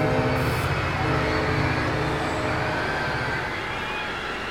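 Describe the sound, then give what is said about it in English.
A train roars steadily along the track, a loud, continuous rumble with grinding metallic tones and a faint high squeal riding over the noise throughout. “Screaming down the track, the transcontinental terror is making its nightmarish run.”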